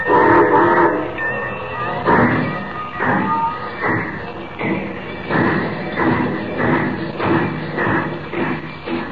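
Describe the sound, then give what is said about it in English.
A steam train carrying a cargo of gold pulls away for Metropolis with rhythmic chuffing bursts that repeat steadily, loud, with a high whistle-like tone threaded through the clatter. No one speaks. “Unknown to Superman, the train carrying the cargo of gold and Jimmy Olsen starts on its trip an hour earlier.”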